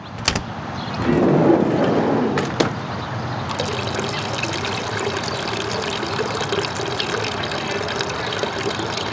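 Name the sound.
urinating into a toilet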